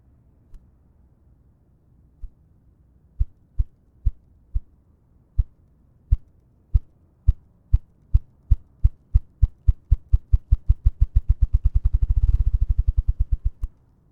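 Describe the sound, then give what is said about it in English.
Deep, muffled wing-drumming thumps from a male bird's courtship display, its wings rapidly rotating back and forth, begin slowly and spaced apart, then speed up into a rapid accelerating roll that blurs into a low whirring rumble before stopping. No voices. “The deep thumping sound starts slow and builds to a crescendo as the bird rapidly rotates its wings back and forth.”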